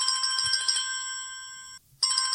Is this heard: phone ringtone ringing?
yes